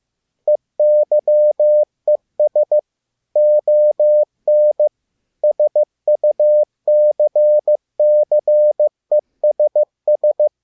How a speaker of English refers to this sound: That was Eyes on Success in Morse code.